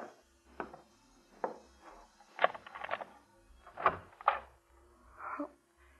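A door being opened, with a string of wooden clunks, clicks and rattles spaced unevenly over several seconds, like a latch and handle being worked. No voices.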